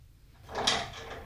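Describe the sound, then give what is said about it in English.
A front door is pulled open in one short, scraping movement with a brief rattle at its peak, moderately quiet, with no voices present. “Go and open the door for him.”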